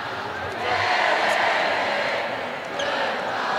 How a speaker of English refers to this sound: Now the Weddington student section is letting the Panther Creek student section hear it